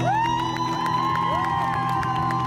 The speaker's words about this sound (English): Ladies and gentlemen, I just want to give a round of applause to all the teachers in the world who have done great, great work for all the students. So, here's a clap. Wow. Followed by an audience clapping.